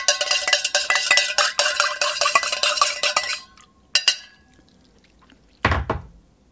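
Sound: stirring a drink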